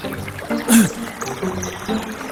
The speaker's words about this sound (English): While he was working, he accidentally dropped his iron axe's blade into the river, since it was too old and no longer durable.